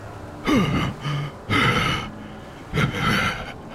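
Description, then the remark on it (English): A man who has just swum to the edge of a lake and pulled himself out of the water pants hard: three loud, breathy gasps with a voiced edge, spaced roughly a second apart, and no other sound around them. “He sits there, panting for a few seconds.”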